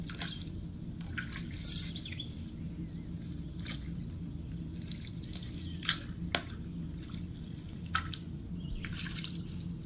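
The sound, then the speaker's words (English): Paddles dip quietly in and out of the still surface of a lake in the evening, with soft, irregular drips and small splashes over a steady low background rumble. “The sounds you hear include the water as your paddles dip in and out of the still surface, and then also the chatter of the insects that surround the lake.”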